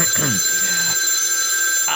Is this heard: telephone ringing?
yes